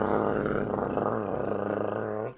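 A garbage truck's engine roars past in a loud, steady, growling drone with a rough harmonic tone, holding for about two seconds before cutting off abruptly.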